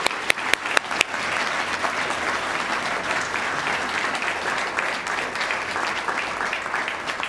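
A large audience breaks into sustained applause, a few sharp individual claps at the start quickly swelling into a dense, steady roar of clapping that carries on at an even level throughout.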